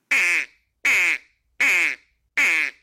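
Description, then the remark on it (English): Four loud, evenly spaced nasal quacks from a duck call, each a buzzy reed tone lasting about a third of a second with short silences between, and no talking. “Because you're just letting that reed vibrate, right?”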